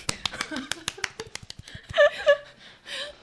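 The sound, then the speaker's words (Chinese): A small group claps by hand in applause for Lao She, a quick, uneven patter of sharp slaps, while voices and light laughter rise briefly partway through before the clapping tapers off. “为老舍鼓掌。”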